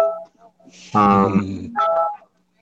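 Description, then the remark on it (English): A phone's electronic message notification tones chime several times in quick succession, loud, with a brighter buzzy burst in the middle and no one talking over them. “Everybody, silence your phone.”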